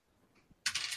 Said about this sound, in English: That's that wasn't a d6. What am I doing here? I'm sorry. I'm rolling the wrong dice.